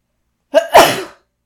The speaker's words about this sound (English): I'm going to sneeze.